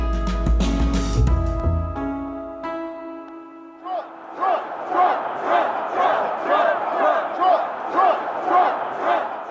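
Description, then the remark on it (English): A large protest crowd of thousands, just down the road from the US Capitol in Washington, D.C., shouts in a loud, steady rhythmic chant with repeating surges, coming in after a few seconds of musical tones with deep bass. “I'm standing in a crowd of thousands of people just down the road from the US Capitol in Washington, D.C.”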